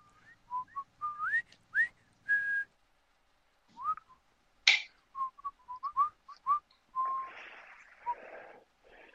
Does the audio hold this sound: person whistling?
yes